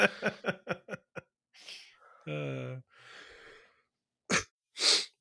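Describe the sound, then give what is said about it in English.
A coughing fit into a microphone: a rapid string of about six short, harsh bursts, then breathy gasps and a brief voiced groan, ending with two louder, rasping coughs. “And now you're giving me the cough. It's right through the microphone.”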